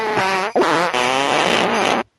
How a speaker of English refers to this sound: First of all, I apologize for the musical fart last week. That was uncalled for.